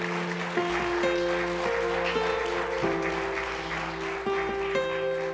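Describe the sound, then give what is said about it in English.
An audience claps steadily in praise of God, the applause a dense continuous patter throughout, while sustained keyboard or organ chords play underneath and shift between notes. “Can we just give him one hand clap of praise?”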